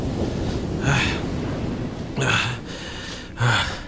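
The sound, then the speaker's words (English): Ocean salt water sloshing and splashing in open sea with no land in sight, three noisy surges spaced about a second apart over a steady rushing wash, moderately loud, no voices. “Soft water. Soft salt water cushioned my landing.”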